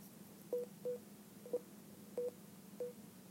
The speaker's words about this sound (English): So the beeping is to tell me if I'm getting close to the barcode. It's beeping faster because I'm getting closer. Slower when you get away. See?